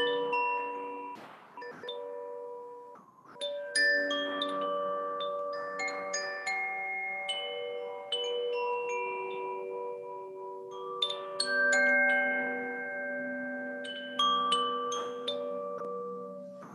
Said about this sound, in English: Okay, well, I have to ask, like, do you have an instrument around that you can, like, play for us? Oh, yeah. We have some of our chimes right here.